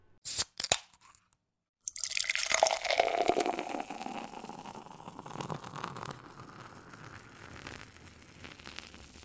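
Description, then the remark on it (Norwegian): A couple of short clicks and a brief pause, then a steady gurgling pour of liquid into a glass, the tone rising as it fills before slowly tapering off. No one speaks. “Ja, nei, vi kan gå videre, eller vi kan ta så fylle opp glasset først, og så gå videre.”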